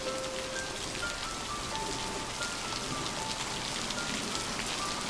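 Steady rain falls continuously, a dense hiss of drops spattering on a surface, with faint thin tones threading through it. No one speaks.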